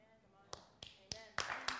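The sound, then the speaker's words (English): A woman claps five times in a slow, steady rhythm, each clap sharp, over a faint murmur of voices in the background. “My wife claps.”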